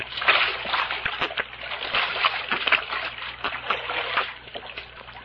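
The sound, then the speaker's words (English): Continuous splashing and sloshing of spring water, with irregular bursts of splatter as people lie face down and drink from it, lasting several seconds without speech. “Hey, how about us falling on our faces and having a drink, huh? Undoubtedly spring water.”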